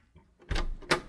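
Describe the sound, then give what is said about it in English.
Two quick bursts of metallic rattling and scraping as a key that is stuck and not fitting all the way is jiggled hard in a door lock, with a brief pause between them. “My key's stuck in the lock!”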